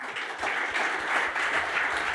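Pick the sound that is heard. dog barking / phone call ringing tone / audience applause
audience applause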